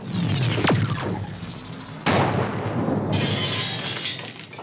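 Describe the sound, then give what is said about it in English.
A cannon loaded with buckshot fires with a loud booming blast and a quick falling whistle, followed by a second abrupt burst and a sustained roaring, crackling rumble that fades out, with no voices. “Fire the cannon!”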